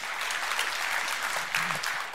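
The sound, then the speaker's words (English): An audience claps for the Lord at the preacher's request, a steady, dense wash of applause, moderately loud and sustained for about two seconds with a slight swell near the end. “That was kind of a weak hand clap.”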